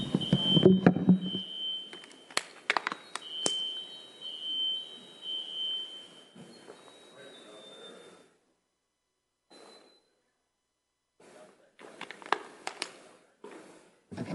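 A building's fire alarm system beeps with a steady, high-pitched electronic tone in repeated pulses while someone deals with it, mixed with clattering and handling noises, then goes quiet before more scattered rustling and knocks.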